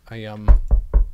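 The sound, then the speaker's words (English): Four heavy knocks on a door, evenly spaced in a quick steady rhythm, right after a short sustained voiced sound. “I think it's your door.”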